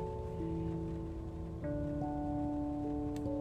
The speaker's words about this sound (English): The rain is so soothing. Makes me want to go to sleep.